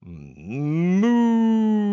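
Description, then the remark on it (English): A single drawn-out vocal moo imitating a cow, starting low and rising in pitch before holding a steady, loud tone for over a second. “Moo!”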